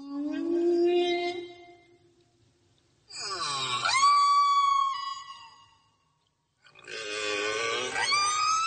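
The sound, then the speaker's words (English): Three long, eerie whale calls, each a drawn-out moan with sweeping, warbling pitch and rich overtones, separated by brief silences and heard clearly without any talking. “Do we have my whale?”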